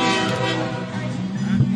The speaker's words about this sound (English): Actually, my frenemy right now is the train. Is the who? Here, oh, hold on. The train. We got a train.